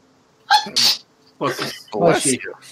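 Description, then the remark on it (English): A single loud sneeze bursts out with a sharp breathy hiss, then voices start talking right after it. “Bless you.”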